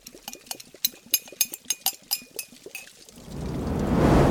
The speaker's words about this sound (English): Now, just the water. Let it boil over.